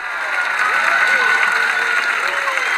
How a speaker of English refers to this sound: And the galleries erupted in applause.